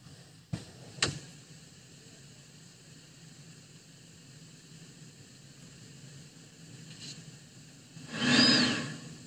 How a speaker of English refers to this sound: Did you hear that? Well, it sounds like a little toot. No, it is an air conditioning like revving up, but the damn car isn't on.